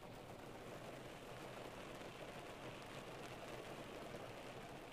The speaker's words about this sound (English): Like, can you hear the rain right now? I'm in my room and it's raining. Okay, a little ASMR moment here. Listen to this.